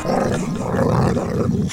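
A dog growls in one low, rumbling, continuous snarl lasting under two seconds. It is loud, with no speech around it.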